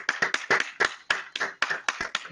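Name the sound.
neighbours clapping outside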